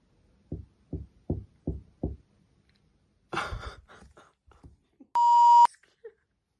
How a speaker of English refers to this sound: It's a proper hard knock. Like, I can feel it. It's like, it's not on the other side. There's like a few. It's like underneath.